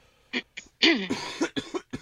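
A coughing fit: a rapid string of about half a dozen harsh, raspy coughs in quick succession, with throaty clearing sounds and no talking in between.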